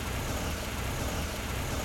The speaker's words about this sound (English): The car doors open and shut. And the engine turns on.